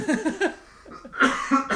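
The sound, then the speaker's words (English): A coughing fit: a quick run of short, throaty coughs, then a brief pause before several harsher, louder hacking bursts. No one speaks. “And you're having a coughing fit, babe.”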